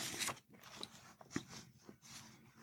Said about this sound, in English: Turning the pages.